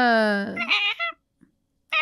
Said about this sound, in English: Your cat keeps yelling at me. Your cat? Yeah.